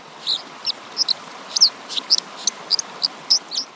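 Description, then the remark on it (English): A dipper sings a loud, lively song of sharp, high chirping notes in a quick, uneven series, heard clearly over a steady wash of rushing water. “So like the dipper, for example, has a really loud song, so you can hear it over the sound of rushing water.”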